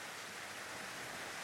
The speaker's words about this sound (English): I'm on my friend's balcony right now, just chilling out by myself, listening to the rain.